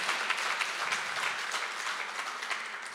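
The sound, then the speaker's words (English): A crowd applauds steadily for a few seconds, a dense wash of many hands clapping with no pauses and no voices rising above it. “Because an applause for that point means nothing if you're not going to actually go home and pray.”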